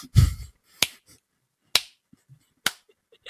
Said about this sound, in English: Don't clap that. Don't clap that. Why would you clap that? It's awful.